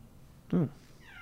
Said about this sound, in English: Hmm. Sounds like an alarm, but it's actually a cat. Yeah, I don't know if you can hear that. I can't. I can. Yeah. it's really distracting.